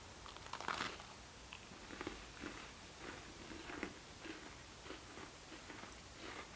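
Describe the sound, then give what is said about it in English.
Crunchy chewing as people munch cookies resembling winter Oreos against microphones, with irregular crisp bites and crackles over several seconds and no talking. “Nothing better than the sound of people chewing on microphones.”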